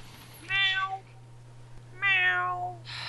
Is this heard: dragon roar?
no